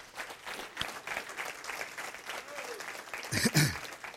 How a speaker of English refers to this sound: Come on now. Give him one more big round of applause.